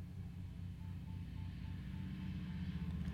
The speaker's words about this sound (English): Sorry, distracted by this motorcycle guy.